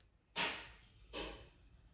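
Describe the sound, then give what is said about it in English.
A home heating system kicks on with two loud, breathy whooshes about a second apart, each dropping away quickly into a low background rumble. No one speaks. “Sorry about that, the heat turned on.”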